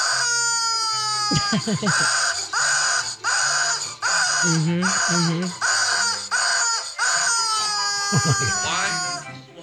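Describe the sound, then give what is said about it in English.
A squeezed gold rubber chicken toy lets out a loud, shrill squawk that pulses through repeated honking bursts for several seconds before trailing off. “That is a chicken. And it's like a gold chicken. And it just makes this really crazy, crazy sound.”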